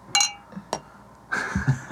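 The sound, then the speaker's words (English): Champagne bottles clink together in a toast at a brunch, a bright ringing chime, followed by a lighter second tap and then a burst of hissy fizz. No one speaks. “Kevin and Jacob is going to take a swig out of my champagne bottle”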